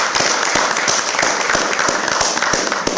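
Steady audience applause from a crowd, a dense wash of many hands clapping with sharper individual claps popping out, holding at a fairly loud, even level throughout.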